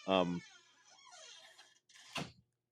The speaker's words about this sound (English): sorry if you heard that creak, that was a door.